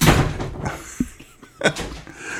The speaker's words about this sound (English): He slammed the door. Yeah. He apologized.